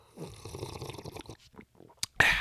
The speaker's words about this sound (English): You can make any type of generic coffee taste good. Folgers, Maxwell House, Old Cowboy Coffee, whatever you got to do, slurp it. Spray it all up in your mouth, all up in your teeth. It'll taste good. Trust me. I'm going to do it right now.